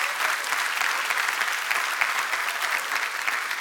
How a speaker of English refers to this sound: Come on, you ought to clap your hands for that.